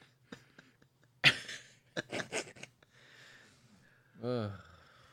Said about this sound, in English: That was your sneeze.